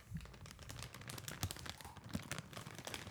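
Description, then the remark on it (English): A crinkly bag of salt and vinegar kettle chips is crunched and handled for a few seconds, giving a dense, irregular stream of sharp plastic crackles at a fairly soft level, with no talking. “Now listen as the bag crunches.”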